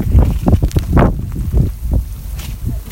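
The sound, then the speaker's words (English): Heavy wind and rain roar in loud, uneven gusts, with deep rumbling buffeting throughout and no voices, recorded during a mountain climb as the climbers are about to leave the ninth station. “It's raining and it's windy. It sounds terrible.”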